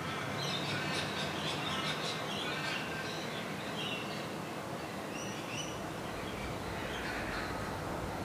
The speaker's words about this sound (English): But there's also a heap of birds. So many birds.